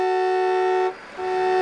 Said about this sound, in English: Who is that honking? Hope it's not at me.